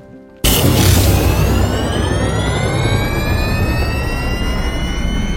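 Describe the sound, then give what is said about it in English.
An aircraft engine roars to life abruptly for takeoff after a brief quiet moment, settling into a loud, steady rumble with a rising turbine whine sweeping upward, without voices. “Okay, engine's hot. Ready for takeoff.”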